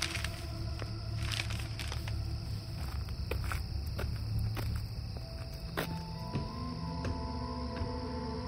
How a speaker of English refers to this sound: he slowly ascended the creaking boards to the porch.